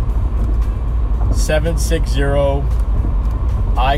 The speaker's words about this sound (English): If you have another name for this segment where I'm riding along in my car and talking.